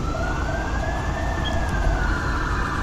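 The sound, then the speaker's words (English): Fire engine and ambulance sirens wail steadily over a rumbling engine backdrop, a long rising-and-falling tone sustained throughout, loud, with no voices. “There's EMS and fire.”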